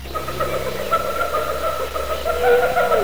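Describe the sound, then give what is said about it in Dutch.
A recorded hyena call, one of the encoded sounds on LPs sent as a message to another civilization, with a sustained, hooting whoop that holds steady, then swoops downward in pitch near the end, over a constant low hum. No one speaks. “Zoals het geluid van een hyena.”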